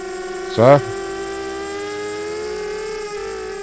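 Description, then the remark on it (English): A delivery drone buzzes steadily as it arrives outside, a continuous mid-pitched harmonic drone that holds its tone throughout, briefly overlapped early on by a short louder burst. “That's the drone. Yeah, the drone is arriving now.”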